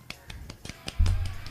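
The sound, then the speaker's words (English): A quiet golf clap: about eight soft, light claps in a quick, even rhythm, with a low rumble coming in under the last few. “Golf clap.”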